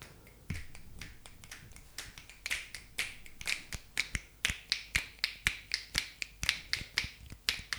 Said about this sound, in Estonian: Me hakkasime nipsutama üks nagu jämmima. Aga ma arvan, et mitte ainult... Ega meie ju ainult ei kuula seda nipsutamist.